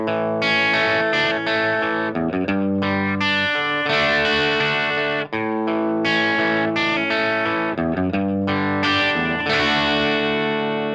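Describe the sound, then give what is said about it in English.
A distorted electric guitar played through a Storm treble booster pedal plays a continuous arpeggiated pattern of ringing, overlapping notes with bright, saturated highs and rich overtones, loud with no voices. “making the sound more rich, and the highs are a little silkier, and adds interesting harmonics and the overtones to the part”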